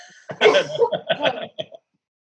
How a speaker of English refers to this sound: Excuse me, I was trying to stifle a cough. We'll cut the part with me coughing.